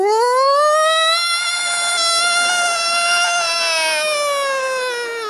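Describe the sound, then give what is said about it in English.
A voice imitates a New York City fire truck siren with one long, loud wail that climbs in pitch, holds high and steady for several seconds, then sags slightly at the end. “While the fire truck siren has been more of a...”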